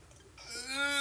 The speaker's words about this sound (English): God, we're so bad about belching on this program. No, it's fine. I'll cut it out.